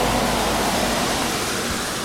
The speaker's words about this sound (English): A lot of noise here with all these cars speeding by on a wet road, but we're soon going to enter the woods where it will be a lot calmer.